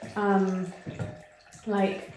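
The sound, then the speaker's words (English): Water runs from a tap with a soft, steady hiss and splash, partly masked by a person talking over it in short bursts. “That's water running, by the way.”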